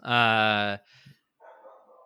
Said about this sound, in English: I thought it was my neighbor's dog.